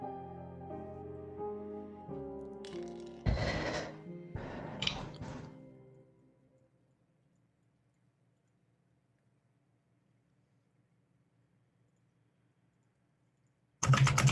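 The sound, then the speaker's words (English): Two short bursts of computer keyboard typing clatter over a sustained soft musical tone, followed by a long stretch of near silence and one more abrupt burst at the very end. “we can hear your keyboard.”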